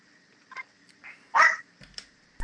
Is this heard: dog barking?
yes